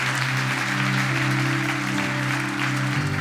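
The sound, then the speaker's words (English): A crowd at a church gathering claps steadily and loudly for several seconds for people who just made a commitment to Jesus, a dense wash of applause with a low, sustained musical tone humming underneath. “Hey, why don't we just give a massive round of applause for those who just made that commitment tonight.”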